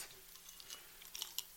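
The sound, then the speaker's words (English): Quiet chewing with soft, irregular crunchy clicks and wet crackles, a few louder bites standing out near the end, with no voices. “Okay, we have chewing again. But actually, joyful chewing.”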